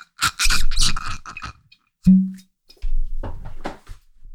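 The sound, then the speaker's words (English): Crinkly scraping and rustling from a bottle being opened, then a sharp pop with a short hollow ring, followed by more handling and scraping sounds. “I'm going to pop this open.”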